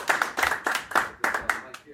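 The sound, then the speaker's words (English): An audience at a producer battle claps together, a dense patter of many hands rising and falling in loose waves, moderately loud, with faint voices mixed underneath. “Clap it up, y'all, one time right there, man.”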